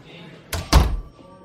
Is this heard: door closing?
yes